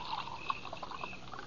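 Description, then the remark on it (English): Coffee pours steadily into a cup, a soft, gurgling trickle of liquid that stays quiet for a brief moment, with no voices over it. “Some more coffee”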